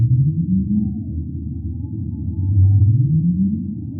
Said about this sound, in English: I think the most common sounds that we are hearing are from humpback whales. Humpbacks are increasingly present in our local waters.